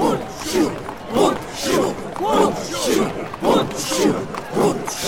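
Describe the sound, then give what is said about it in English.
A large crowd chants "Bunshu", the name of the farmers' wooden clog and a German peasant rallying cry of revolt, repeating it in a steady rhythm roughly every second, many voices blending into a loud roar echoing between stone houses. “Some in the crowd are chanting Bunshu, the name of the wooden clog worn by the farmers.”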